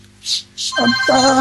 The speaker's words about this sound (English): I think phone call. Yeah, that's mine.